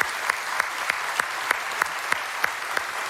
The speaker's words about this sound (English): But I think we should give them a big round of applause for being here with us today.